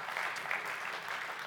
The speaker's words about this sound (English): Now, I haven't said why we're thankful. You just clap because I said his name.